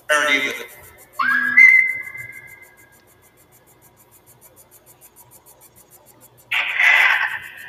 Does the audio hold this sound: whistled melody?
yes